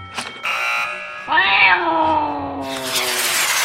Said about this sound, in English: And here's my cat. Teeny Tammy. She's so teeny she fits in your coin purse.